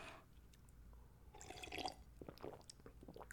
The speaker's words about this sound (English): Yes. Quick sip of water, boss. Don't mind me, boss. I'll wet my whistle.